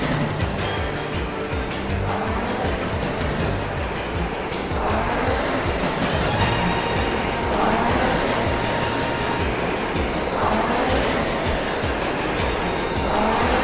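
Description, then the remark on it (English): A rowing machine's flywheel whirs steadily and loudly, surging in a rhythmic whoosh about every three seconds as each stroke is pulled at an easy, even pace, at a stroke rate of 22 while warming up at the start of a 30-minute piece. “I'm rowing nice and easy.”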